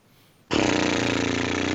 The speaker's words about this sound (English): Was that a bad impression of a Dyson? No, that was just me burping. But, well, I wasn't quite burping.